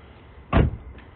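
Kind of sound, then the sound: vehicle, car door being shut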